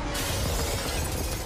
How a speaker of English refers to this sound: Hulk smashes through the roof.